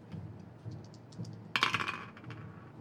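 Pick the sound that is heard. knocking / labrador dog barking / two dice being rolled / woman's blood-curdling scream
two dice being rolled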